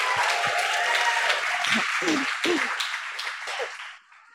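An audience applauds a host being introduced at an evening event, a dense wash of many hands clapping, steady and fairly loud, with a few cheers and whoops rising through it before the clapping thins and fades out.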